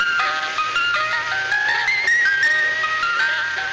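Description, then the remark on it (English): A bright, tinkling electronic melody plays steadily, its simple high-pitched tune stepping up and down like an ice cream truck jingle, loud and unbroken with no voices. “the ice cream truck.”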